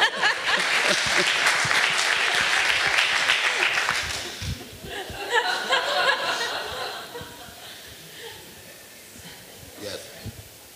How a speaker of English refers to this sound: I think you deserve a round of applause.